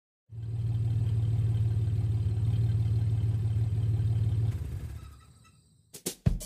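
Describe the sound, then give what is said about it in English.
A truck engine rumbles steadily for several seconds as it drives into a driveway, then cuts off and fades, followed by a few sharp clicks or knocks near the end. “truck drove into the driveway.”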